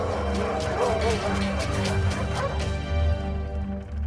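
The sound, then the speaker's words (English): Dogs bark loudly and repeatedly, a rapid, overlapping string of sharp barks and higher yips that continues without a break for several seconds. “If you've seen the movie, it's really hard to imagine these sweet dogs playing tough.”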